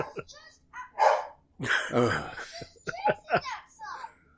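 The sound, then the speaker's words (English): Dogs bark in a quick, irregular string of loud, sharp yaps and woofs, several overlapping within a few seconds, with some other vocal noise mixed in. “Deal with the dogs!”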